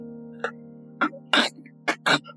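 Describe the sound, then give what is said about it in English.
A voice imitates a man's wet, gurgling cough in a series of five short, harsh bursts, fairly loud, over a steady low hum. “And he coughs. It's almost like a gurgling sound.”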